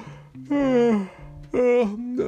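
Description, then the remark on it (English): Two drawn-out voiced yawns, each sliding downward in pitch with a sleepy groan, fairly loud, one after the other with a short pause between. “He yawned.”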